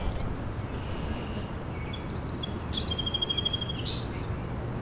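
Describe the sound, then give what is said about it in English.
A northern parula sings a rapid, buzzy trill that runs for about a second and ends in one sharp, clipped zeet. The song is close and clear over a steady outdoor hiss. “That was a northern perula, it's right in front of me. That rapid trill ending in a zeet.”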